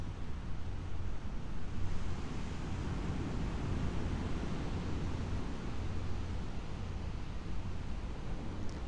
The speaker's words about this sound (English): How long does it take after arriving and sitting and settling for you to hear the waves? Hear the sea.